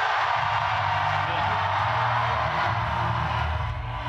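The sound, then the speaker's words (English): An audience cheers in a loud, steady roar of mingled voices and whoops, holding at an even level for about four seconds with no clear words. “They're cheering for this devastating mistake I made.”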